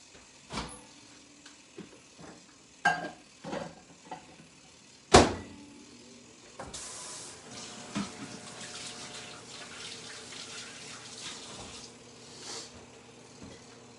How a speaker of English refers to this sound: So I can already hear it popping in the microwave. Sometimes it makes a mess, these products.